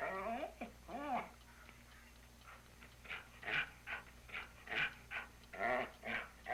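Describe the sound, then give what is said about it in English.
A dog whimpers with rising, whiny cries at first, then growls and huffs in a series of short, uneven bursts, moderately loud. “What's the dog gonna do?”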